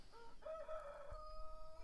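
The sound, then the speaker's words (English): A rooster crows once in a long, strained cock-a-doodle-doo, its harmonic call rising and holding before trailing off, clear with no one talking. “I think we need to chase the chicken away.”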